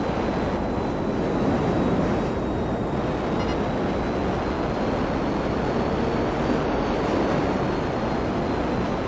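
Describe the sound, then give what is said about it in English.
A loud, steady jet engine roar from a fast-flying jet fills the whole stretch, a dense, unbroken rushing drone with no voices over it. “See how much faster this jet is than that plane.”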